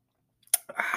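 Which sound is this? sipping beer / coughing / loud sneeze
sipping beer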